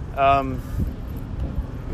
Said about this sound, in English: Apparently things got bad because, like, sorry, the truck's coming again.